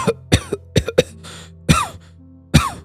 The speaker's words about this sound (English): He coughed through his laughter and took a moment to recover.